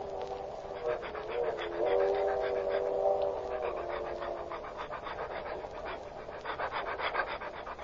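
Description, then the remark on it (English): A dog pants steadily in quick, rhythmic breaths while being walked on a leash down the aisle of a car, with a brief whining tone mixed in early on, continuing throughout against a low background hum. “You were going down the aisle with your dog?”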